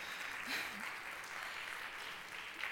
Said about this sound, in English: As we close up, it's kind of cool, you can clap at that.